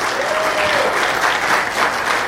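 A crowd at The Joy applauds the Laughing Vixen Lounge, many hands clapping in a dense, even wash of sound that holds at a constant loudness for a couple of seconds, with a brief faint tone in the middle.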